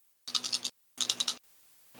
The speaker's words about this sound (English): Going to roll 4d8. Let me get some dice. Get some dice. I mean, I have them. They're out.